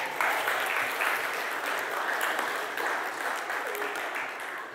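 A crowd claps steadily throughout, a dense, sustained wash of applause that holds at an even loudness and tapers only slightly toward the end.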